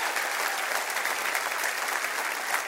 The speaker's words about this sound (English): Yeah, let's clap. Let's do it. All right.